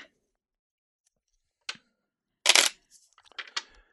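A deck of cards being shuffled close by: a short flick, then a loud, papery riffle burst followed by a quick flurry of softer card slaps and clicks, with silence around them.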